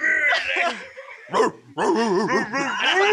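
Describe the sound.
A dog barks and yips repeatedly, loud high-pitched bursts in quick succession, with people talking over the barking.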